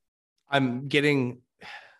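A voice mimics heavy breathing: two drawn-out, voiced sighing breaths followed by a shorter, airy exhale, fairly loud with no words spoken.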